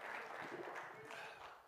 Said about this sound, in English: Come on, let's clap our hands and praise Him this morning. Let Him know you believe Him today.